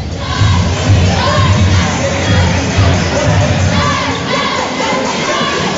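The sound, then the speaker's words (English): A large indoor crowd roars with sustained cheering and shouting during a timeout in a close Fishers versus Snyder game, with the Snyder cheerleaders entertaining the crowd, a steady wall of noise with rhythmic chanting voices rising above it, loud and continuous throughout. “Our broadcast location right above the Snyder bench and right above where the Snyder cheerleaders are also entertaining the crowd here during the game breaks.”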